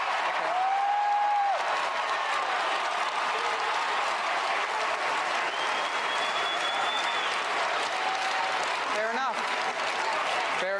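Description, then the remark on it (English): A large crowd claps steadily and loudly for about eleven seconds, a dense wash of applause with a few sharp whistles rising above it. “And listen to the crowd.”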